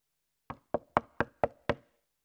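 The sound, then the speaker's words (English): Six sharp knocks rap on a door as a sound effect in a sermon, in a quick, even rhythm, each a short percussive thud with a brief decay, clear with nothing else around them. “The next morning, knock at the door.”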